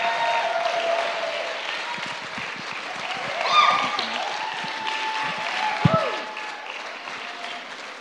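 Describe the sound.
An audience, standing, claps and applauds steadily to welcome a guest speaker, a dense wash of hand claps filling the room, with scattered voices and brief cheers rising through the noise.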